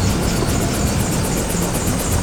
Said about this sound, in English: Look at the bottom of the helicopter! That black slime's crawling all over it! The pilot's covered in this stuff!